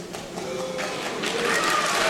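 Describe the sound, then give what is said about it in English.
A Hollywood awards crowd reacts as an award is declined over the film industry's treatment of American Indians. A dense wash of clapping mixes with low, drawn-out booing, the noise swelling steadily louder over about two seconds, with a few whistles cutting through. “Listen to how divided the crowd gets too, the boos.”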